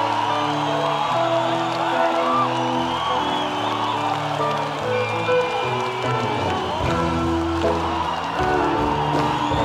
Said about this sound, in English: Then the band steps on stage and this happens. Listen to the crowd. It's a small venue. Crowd freaks out. Listen to that.